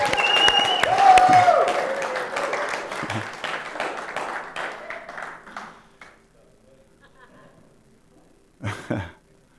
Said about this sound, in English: That was a real fractured clap. Can we go again? Praise God for Richard.